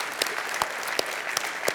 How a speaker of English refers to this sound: Excellent job, guys. Let's give them a big round of applause for that.